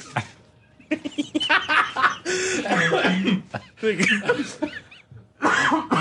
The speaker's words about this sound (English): Oh, I'm coughing like ….